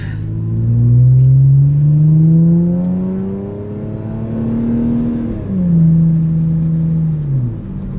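vehicle, car engine accelerating

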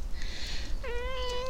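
animal, cat meowing

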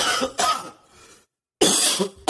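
human body sound, coughing

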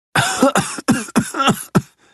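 human body sound, coughing

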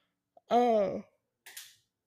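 human body sound, yawn

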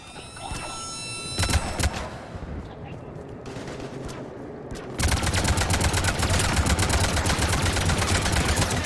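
sound effect, video game gunfire

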